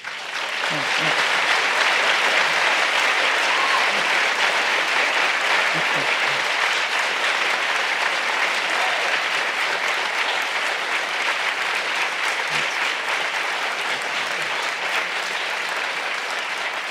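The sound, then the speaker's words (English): Loud, sustained applause from a large hometown crowd fills the whole stretch, a dense steady roar of clapping with no pauses, like a standing ovation. “They're liable to stand up again. It's a sappy bunch, these it's guys. It's a hometown crowd.”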